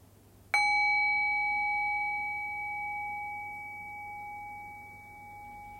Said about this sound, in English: And I'll ring the sound of the bell again. Rest your awareness on the sound of the bell. Allow the decay of the bell to guide your awareness into silence.